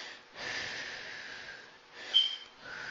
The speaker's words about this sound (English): Think of your breathing as you hear that hum, hum, hum of an engine, right? You hear it revving up. So that is your breathing. So you're present. So breathing in and out.